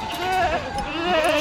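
A goat bleats in a loud, wavering cry lasting about a second and a half, its quavering pitch rising and falling throughout.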